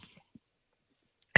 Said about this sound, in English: Just a pop can. Just a pop can. You going to drink that? You want me to slurp it? Yes.